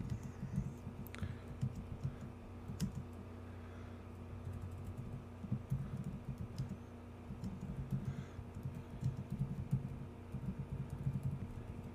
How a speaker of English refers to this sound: Well, I'm typing this.